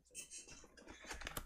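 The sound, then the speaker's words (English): Quiet crinkling and rustling of plastic wrap as a brand-new IBM keyboard in a box is handled, with a few soft clattering taps and scrapes mixed in, no voices. “Is that an IBM keyboard, brand new in plastic?”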